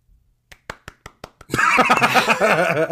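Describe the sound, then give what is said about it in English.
Tepid applause: about seven slow, sparse hand claps in an even rhythm, quickly swallowed by a loud burst of laughter and overlapping voices. “The most tepid applause ever.”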